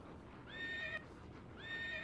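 A horse whinnies twice, each call a rising, quavering neigh lasting about half a second, separated by a short pause over a faint background hiss.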